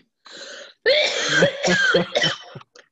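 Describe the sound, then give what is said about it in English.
A raspy fit of coughing after taking too big a hit of smoke: a short breathy hack, then several rough, strained coughs in quick succession, ending with a faint rasp. No one speaks. “Take one too big and then you got to cough for a while.”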